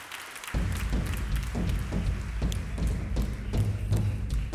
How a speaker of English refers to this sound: One more time, would you give nice applause to them? You may be seated.